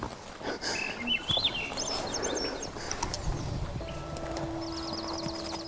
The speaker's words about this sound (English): Having the birds sing.